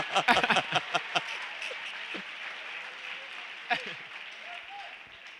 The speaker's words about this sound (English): Clap for him.